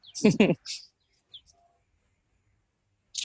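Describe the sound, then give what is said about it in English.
Birds call outdoors: a louder burst of chirping at the start, then a few short, high tweets scattered across a mostly quiet stretch, with one last chirp at the end. “Although it sounds like the birds are doing that for you.”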